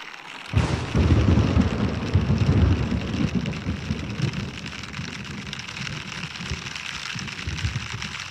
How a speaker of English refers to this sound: Whoa. Yeah. So it starts raining like that.